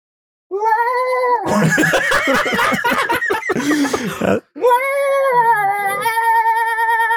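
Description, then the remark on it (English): A voice imitates a kazoo playing the Marvel Studios fanfare: buzzy, nasal sustained tones rising in pitch, then a burst of rapid, choppy buzzing, a brief gap, and a final long held buzzy note. “Ladies and gentlemen, the Empire Podcast is proud to present the Marvel Studios Fanfare Orchestra Fake Kazoos Edition. What a kazoo sound like.”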